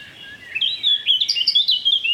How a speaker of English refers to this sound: Here he goes. Goldfinch. It's a proper orchestra.